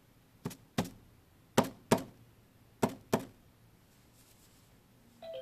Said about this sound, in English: He knocked at her door.